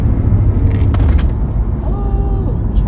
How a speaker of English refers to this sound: Traffic, y'all. I done slowed down all the way.